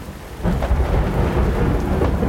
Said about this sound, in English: As I lay on the ground, I watched the storm develop. I remember hearing the thunder define the far reaches of the valley as the storm passed over me, drenching me.